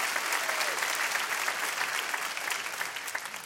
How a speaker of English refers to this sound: Come on, if you believe that, let's clap our hands in this place.